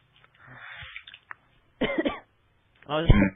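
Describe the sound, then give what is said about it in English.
Two harsh coughing bursts separated by a short pause, preceded by softer breathy throat noise, each cough loud and rough. “I got a cough or someone and it won't leave me.”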